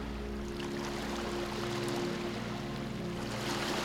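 A steady, continuous wash of ocean surf against the shore, even in loudness, with a low sustained hum droning underneath and no voices.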